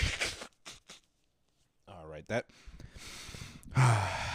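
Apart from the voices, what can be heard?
blowing nose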